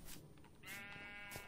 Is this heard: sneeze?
no